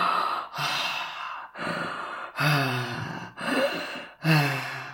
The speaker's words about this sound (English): The same sounds of labored breathing.